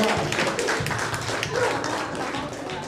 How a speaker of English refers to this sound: Clap for my effort. Let's clap for her.